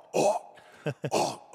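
Someone hawks up a loogie, recorded on a song: a long, harsh, rasping throat-clear, two short guttural snorts, then another drawn-out gravelly rasp, loud and alone with no talking.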